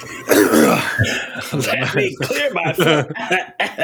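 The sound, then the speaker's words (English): A loud, rough throat clearing, followed by a few seconds of voiced vocal sounds from the same person. “Let me clear my throat.”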